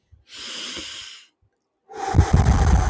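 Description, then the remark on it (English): A forceful breath is blown out in a soft hissing rush, then after a brief pause a second, louder and rougher exhalation bursts into the mic with a windy, breathy roar. “He's blowing.”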